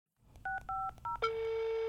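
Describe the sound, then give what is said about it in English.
Three quick telephone keypad beeps as Sheriff Labrador calls Dr. Sheep's phone, each a bright two-note tone, sound in rapid succession, then a steady, continuous tone takes over and holds to the end. No one speaks. “Sheriff Labrador repeatedly called Dr. Sheep's phone as he hurried over to her house.”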